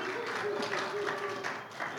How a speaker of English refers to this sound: Oh, can everybody just give a round of applause